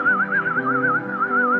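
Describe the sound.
A person whistles one sustained note with a fast, regular wobble, loud, over a low droning hum, imitating a giant's whistle. The note never breaks and no one speaks.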